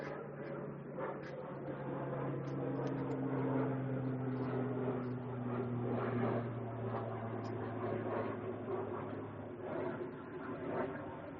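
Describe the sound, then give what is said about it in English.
A steady, droning roar of an airplane passing overhead during a sermon, with low humming engine tones that hold for several seconds before slowly easing off. No one speaks. “Let me pause for the plane.”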